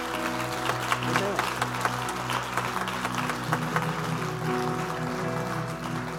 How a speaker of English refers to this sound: We have over 1,000 people attending our church here in the U.S. I think that's amazing. I think, clap your hands and thank God for that.